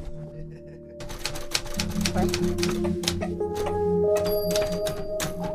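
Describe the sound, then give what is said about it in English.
Typewriter keys clack in a rapid, uneven burst of sharp taps, fairly loud, running steadily for several seconds with a faint murmur of voices underneath. “do you like typewriters?”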